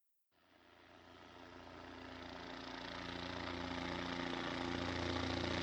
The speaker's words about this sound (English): About an hour into this manhunt, the Kern County Sheriff's helicopter arrived in the vicinity to assist in the search.